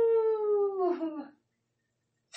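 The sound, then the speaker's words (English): A person lets out one drawn-out wolf-like howl, a loud, tonal cry that slowly slides downward in pitch before breaking off, followed by silence and a brief hiss at the end. “And then just to let y'all know that y'all left me out in the wild, and I was raised by wolves. Ow!”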